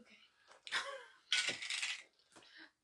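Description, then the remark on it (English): Dice clatter and rattle across a hard table in two bright bursts, followed by a smaller skitter as they settle, with faint voices murmuring underneath; people are rolling dice to decide who picks first. “Everybody else, roll the dice for me.”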